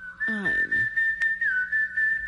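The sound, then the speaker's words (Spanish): A person whistles in imitation of a dove's song: a brief warbling flourish, then one long, steady, fairly high note held with a slight dip in pitch near the end, heard alone. “Canto la paloma. La sinfonía de la paloma.”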